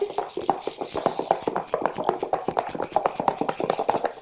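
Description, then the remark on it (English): Shakers, including rain sticks and corks-in-a-box shakers, are played in a band in a quick, steady rhythm: a dense run of crisp, hissy shakes repeating evenly for several seconds with no voices. “The shakers in the band go ch-ch-ch. Let's hear them now.”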